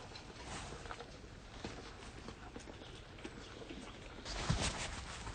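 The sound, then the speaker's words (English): Short hissing puffs of fly repellent sprayed onto animals to reduce the flies bothering them, a few faint bursts and then a louder, longer spray near the end, with scattered clopping hooves and shuffling movement around them. “So perhaps I'll give some little puffs of that and just see if we can reduce the number of flies bothering them.”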